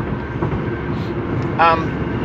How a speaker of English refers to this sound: Thank you, Mr. Diesel Truck. Hopefully we're not side by side all the way home, or this is going to be fun.